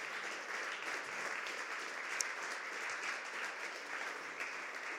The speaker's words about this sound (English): Come on, would you give God a hand clap of praise right where you're at?